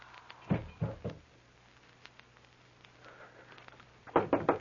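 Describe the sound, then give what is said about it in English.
Knocking on a door in two bursts of three firm, evenly spaced raps, separated by a few seconds of quiet with a low hum in the background. “There's a door. Someone there.”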